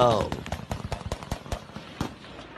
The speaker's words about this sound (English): These definitely sound like gunshots. They definitely sound like high-powered gunshots, right? Like they're coming from those.